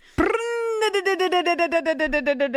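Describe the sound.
A voice imitates a chainsaw: a sudden loud, buzzing hum that holds steady, then breaks into rapid revving pulses, fairly loud, with no other talk.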